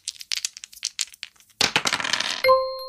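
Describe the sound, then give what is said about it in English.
Dice are rolled in a game: a few light, scattered clicks, then a dense clatter across a hard surface, ending with a bright ringing chime. Fairly loud, no voices. “I flipped the switch to extreme and I rolled the dice again, and it said touch balls.”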